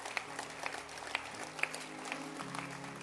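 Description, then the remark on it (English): An audience claps along, with scattered sharp hand claps over a soft crowd murmur and sustained low musical tones shifting underneath. “Clap your hands.”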